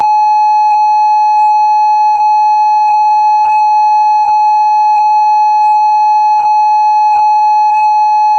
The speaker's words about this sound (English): This is a test. For the next 15 seconds, this phone will conduct a test of the emergency ringtone system.